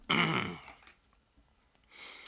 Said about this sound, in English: Okay, well, let me clear my throat.